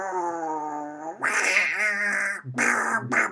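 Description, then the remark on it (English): A person imitates a menacing duck, starting with a long, strained nasal note that breaks into raspy, growling quacks, then two shorter harsh bursts. Loud and alone. “This is a scary duck, Dad.”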